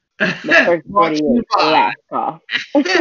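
A person performs a series of throat-clearing coughs, about five rough, voiced bursts in quick succession with short gaps, fairly loud and raspy, with no other talk over them.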